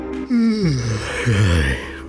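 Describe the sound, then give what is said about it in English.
A man gives a loud, drawn-out yawn, his voice sliding downward in pitch before a second groaning swell trails off, on its own with no talking. “Yawning loudly, he walked past the piano”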